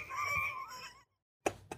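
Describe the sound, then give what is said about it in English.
Someone whistles in imitation of a bottle rocket: a steady, high, slightly wavering tone lasting about a second that trails off, followed by a pause and two short, sharp bursts. “Look, it sounds like a bottle rocket.”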